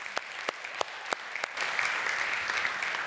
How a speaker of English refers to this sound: So let's give them all a round of applause.